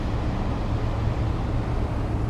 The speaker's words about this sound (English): Oh yeah, there I can see the sea again, and you can hear it also a little bit.